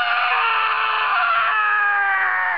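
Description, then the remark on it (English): A single loud, shrill yell held steadily for over two seconds, then dropping off sharply at the end; a voice imitating tennis player John McEnroe angrily yelling at people, with no other sounds. “his M.O., John McEnroe, yelling at people.”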